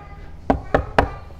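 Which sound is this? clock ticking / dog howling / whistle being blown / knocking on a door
knocking on a door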